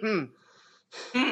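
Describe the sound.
A person vocally imitates a raspy, wheezing cough of someone coughing out smoke: a strained voiced burst, a breathy hiss, then another rough hacking push of voice.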